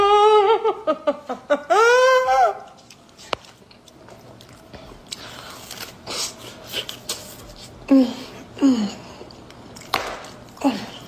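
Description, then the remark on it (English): Wet, sticky chewing and smacking sounds of a woman eating cheesy food, cheese dangling from her mouth, with loud slurps scattered through, after a brief burst of high-pitched vocal squealing at the start. “The slurping sound effects and all that shit.”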